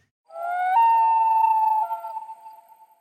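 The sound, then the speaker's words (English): A human voice imitates a whale call with one long, hooting "oooh" that slides upward, holds a steady high, wavering tone, then slowly fades away. No other sounds accompany it. “So I'll avoid those two, but we'll try the whale call.”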